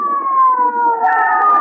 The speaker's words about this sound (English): There's a crowd gathered on the corner near Jack's house. Stand aside, folks. Here comes the ambulance.